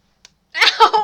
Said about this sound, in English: Stop picking your nose. I'm not picking my nose. So I've got a sneeze stuck in the back of my nose.